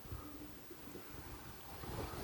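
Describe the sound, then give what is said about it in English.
A boat rumbles past within about 20 feet of a drifting fishing boat with its motor off on open ocean water, its low engine drone blending with the wash of waves and gusty wind buffeting the microphone, steady and fairly loud throughout. “I haven't started my motor, and this motherfucker is going to go within 20 feet of me.”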